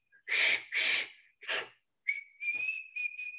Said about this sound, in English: If we were in church right now, I would ask those of you who could whistle to go ahead and do it. So let's just do it anyway. If you have one of those whistles, go ahead and do it at your own house. Can you do it? I can't.